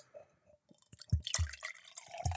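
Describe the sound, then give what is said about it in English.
Water is poured into a glass beside the microphone, starting with a few splashy drips and then a steady gurgling stream with soft low glugs. Nobody speaks. “Can I pour it into the glass by the microphone?”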